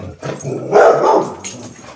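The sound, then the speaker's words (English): Dogs bark in a quick, overlapping burst, the yaps swelling to a loud peak mid-way before tapering off, with some whiny yips mixed in; no one speaks. “It's cotton picking dogs. Dog break.”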